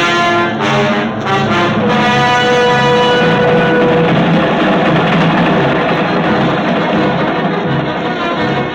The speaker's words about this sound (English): Subway train, Midtown New York.